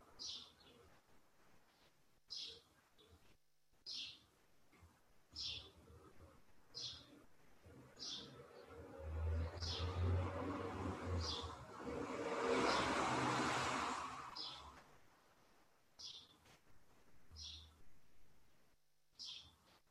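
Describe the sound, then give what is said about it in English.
A bird calls outdoors with short, high chirps repeated at a steady pace, while a vehicle rumbles past in the middle and briefly swells over the calls. “Hearing it as a sound of a bird of a specific type, what's a tonality?”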